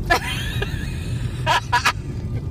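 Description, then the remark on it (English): Several sharp sneezes burst out one after another, a quick cluster of three near the end, over a low steady rumble with no talking. “You got a lot of sneezes there.”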